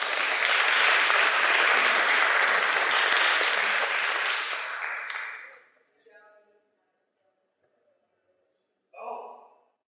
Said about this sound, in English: Please give everybody a round of applause.